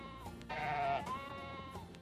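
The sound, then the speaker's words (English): A sheep bleats from some distance, a wavering, nasal cry that rises and then trails into a second, quieter call, with no voices around it. “I hear a bleating sound in the distance.”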